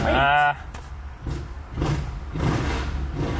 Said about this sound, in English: Oh. Wait a minute. Some motorcycle idiot.